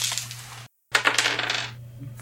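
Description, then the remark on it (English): Percentile dice are rolled for a D100 roll, rattling and clattering across a tabletop, a busy run of hard clicks that breaks off briefly, then tumbles again before settling, with a low steady hum underneath. “Roll a D100. Make you roll that percentile dice you were swearing at before.”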